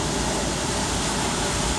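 A steady, unbroken hiss of water from oscillating sprinklers at the end of an automatic car wash tunnel, misting a car, with side buffering beneath the car and a low rumble of machinery underneath; no voices.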